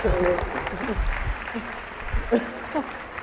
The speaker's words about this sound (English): How about a nice round of applause for both our debaters?